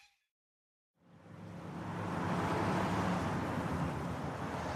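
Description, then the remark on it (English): After a moment of silence, a low, heavy rumble of logging trucks on a busy road swells up and holds steady, a dense, continuous roar of engines and tyres. “First there is the slow rumble of logging trucks on busy roads.”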